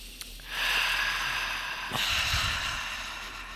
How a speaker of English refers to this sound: No, I was competitive. I was trying to breathe in longer than you and exhale longer than you.